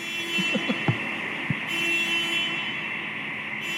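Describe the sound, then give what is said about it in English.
A car alarm blares steadily outside in a continuous high, buzzing tone, with a few faint knocks early on and no talking. “Where is that car? Yeah, send it off a couple more times.”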